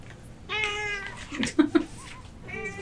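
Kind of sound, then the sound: animal, cat meowing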